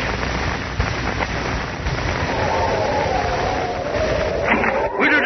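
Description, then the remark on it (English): A snarling storm wind roars steadily and loudly, with a rising, whistling moan that swells near the end. No one speaks. “Oh, that wind. I can hear it now. Snarling and talking.”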